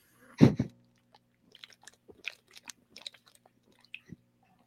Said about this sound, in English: Awkward silence. I'm sure they could hear me swallowing.